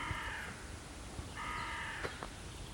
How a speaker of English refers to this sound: And there's a crow.